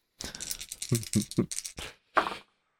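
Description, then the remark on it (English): One action die and two challenge dice rattle and clatter across a hard surface in a quick burst of clicks, followed by a final tumbling roll, fairly loud with no voices; they land on 4, 5 and 7. “This time we've got a 4 on the action die, a 5 and a 7 on the challenge dice for another miss.”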